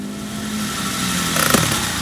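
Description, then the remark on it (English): A voice mimics with the mouth the engine of an old .38 Bantam car: a steady, buzzing idle, then a brief sputtering rise before it cuts off, like an engine being switched off. Fairly loud, no other talking. “makes a noise of a car's engine running, then turning off.”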